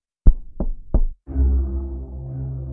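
Three firm knocks on a door in steady succession, loud, followed by a low, continuous rumbling hum that lingers after the knocking stops.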